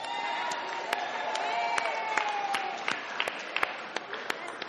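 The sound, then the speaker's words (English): At a church, an audience applauds the band steadily, a dense wash of clapping with some sharper individual claps standing out, along with crowd cheering and a few high whoops. “Hey, let's just give … band a round of applause.”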